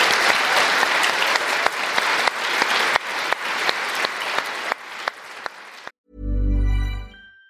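An audience applauds in appreciation at the end of a discussion, a dense, steady wash of clapping for about six seconds with a few sharper claps standing out, then it cuts off abruptly and a brief low sustained tone follows.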